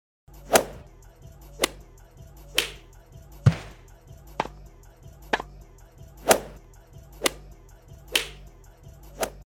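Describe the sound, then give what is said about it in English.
Ten sharp, loud slap sound effects crack one after another at uneven intervals, each a crisp smack with a brief whip-like snap, over a faint low background hum. “There you go. You got 10 Dana slaps for that.”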